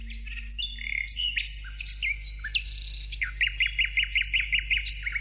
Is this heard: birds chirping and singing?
yes